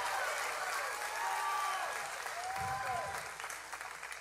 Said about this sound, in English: Come on, I'm preaching better than you're shouting. I'm preaching better than you're clapping. I need some response.